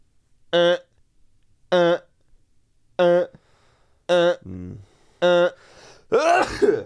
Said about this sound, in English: I'm going to sneeze very soon. Go on. Go on.